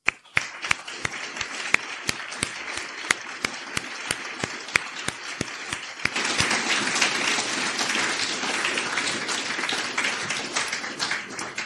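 Steady, evenly spaced claps build for several seconds, then swell into a dense, continuous wash of audience applause that carries on loudly to the end, with no talking.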